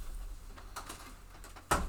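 A door creaks with a few soft, scraping squeaks, then slams shut with a single loud, heavy thud near the end. No one speaks.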